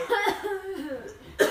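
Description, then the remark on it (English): A cough bursts out, followed by a brief voiced, throaty sound, then a second sharp cough at the end; two coughs in all, fairly loud. “I have to cough loudly too.”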